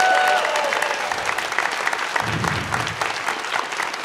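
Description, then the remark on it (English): A crowd applauds the volunteer mic runner, clapping steadily and loudly for about four seconds, a dense, continuous patter of many hands with no pause, and a few faint voices cheering underneath. “By the way, can I just get a big round of applause once again for Scott Fletcher for being this guy?”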